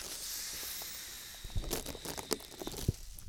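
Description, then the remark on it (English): Plastic bag crinkling: a steady airy hiss gives way to a string of sharp, irregular rustling crackles in the second half, with no voices. “Got a little, it's a plastic bag.”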